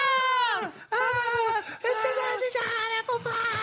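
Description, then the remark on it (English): A voice imitates children screaming in pain from hot McDonald's apple pies, as in Kevin Meaney's old comedy bit: loud, high, wavering wails in three or four sustained bursts separated by brief breaths, with no other sound around them. “Hot kids walking away screaming, ah!”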